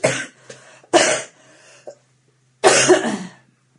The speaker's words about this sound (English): Coughing! I've been coughing all the time.